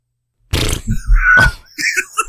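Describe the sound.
A voice imitates a wet fart as a verdict on the 2022 film Firestarter: a short, spluttering blurt with a low rumble and a brief squeaky whine, then a few softer sputters trailing off.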